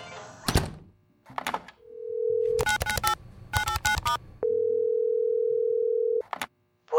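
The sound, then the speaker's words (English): A handset clunks up, a steady telephone dial tone hums, then a quick run of keypad beeps follows as someone calls a person back, before another long, even tone and a final clunk. “Pick up the phone and call her back.”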